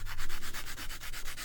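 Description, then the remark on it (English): Pencil scratching across paper in quick, steady back-and-forth strokes as a portrait is drawn, a soft hissy rasp repeating about ten times in rhythm, with no voices. “Then pick up his pencil.”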